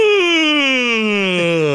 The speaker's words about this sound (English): Big yawn.